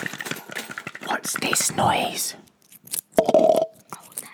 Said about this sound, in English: That's the sound of a 10p rubbing against a 1p.